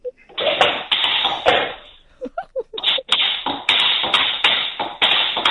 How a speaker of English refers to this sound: Tap dancing to the Grange Hill thing.